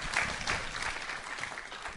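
A round of applause from a crowd, a dense, steady wash of many hands clapping at fairly even loudness for the full two seconds, with no voices standing out.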